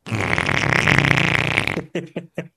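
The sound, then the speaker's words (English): A man with his hands held up to his mouth blows a long, loud, buzzing raspberry with the lips that imitates a fart. It is sustained for nearly two seconds, then trails off into three short sputtering bursts. “Joaquin Phoenix farted”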